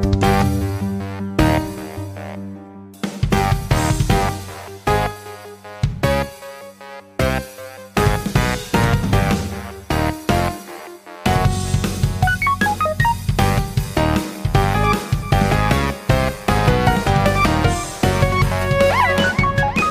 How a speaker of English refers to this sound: But okay, now let's play the theme song and get the show started. Here we go.